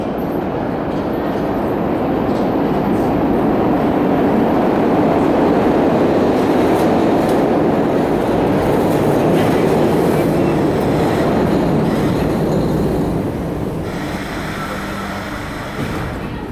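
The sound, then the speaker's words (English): A Philadelphia subway train rumbles steadily along the rails, a loud, continuous low roar with rattling and clacking throughout, easing off slightly near the end. “I ended the very first experimental episode of this podcast with sounds I had recorded from the subway.”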